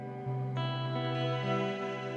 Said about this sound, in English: That's the riser one. So you've got all the harmonics that sort of lift up out of that. Really beautiful. So it's on the reverb. Yeah, so basically, when the reverb, when you hear the tail of it, you hear a lot of higher frequencies coming in.